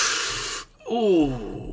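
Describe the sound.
A person sharply sucks air in through clenched teeth with a loud, close hiss, pauses briefly, then lets out a short falling groan, a voice acting out a wince.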